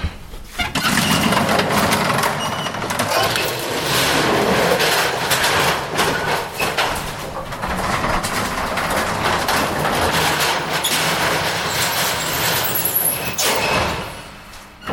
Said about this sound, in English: Elevators with this kind of door abound.